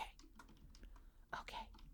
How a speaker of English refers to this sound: Okay. I'm typing and I hope it's loud and bothering you. It's not. Damn it.